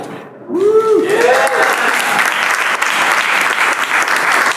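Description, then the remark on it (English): A live audience at a Tech Week event breaks into loud, sustained applause after the introduction of pro wrestler Colt Cabana, a dense wash of clapping that holds steady to the end, with a brief voiced cheer or whoop rising at the start. “Thanks for the delayed applause.”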